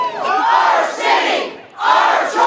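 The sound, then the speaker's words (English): A large protest crowd in Maple Ridge, BC, shouts in unison on a Saturday against a planned low-barrier modular housing complex on Burnett Street, a loud, sustained roar of many voices rising in two bursts with a brief dip between them, with no single voice standing out. “Not all of the citizens, but a large crowd gathered Saturday to send a clear message to the BC government.”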